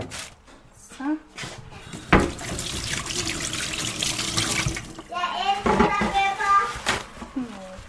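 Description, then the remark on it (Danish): A tap gushes steadily into a sink for several seconds, a continuous rushing splash, with a child's voice and other speech chattering over it before and after. “Måske lige hente noget vand.”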